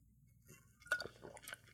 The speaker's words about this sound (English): Take a sip of this stuff. Interesting drink. I don't know if I like it. It's good. It's coconutty. But yeah, it's got that like fake sugar aftertaste.